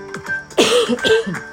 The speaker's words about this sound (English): Just suddenly had to cough. How strange.